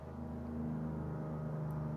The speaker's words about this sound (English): Background traffic.